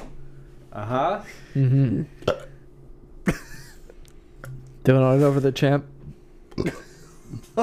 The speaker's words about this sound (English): Burp. I think I've ever heard you burp this much. Nice. That one sounded wet. Yep. No way, I don't believe it. It sounded like you're fighting a demon in there.